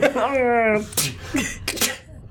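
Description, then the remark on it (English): A voice imitates sneezes: a drawn-out, wavering vocal windup followed by three sharp, breathy bursts in quick succession, fairly loud and with no other sounds around them. “Those are happy sneezes.”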